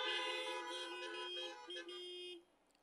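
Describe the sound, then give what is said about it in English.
Several car horns from a church service audience blare together in a long, steady honk, with a brief dip near the end before the sound cuts off, leaving faint background noise. “Do you believe in this vision? If you do, let me hear you beep your heart.”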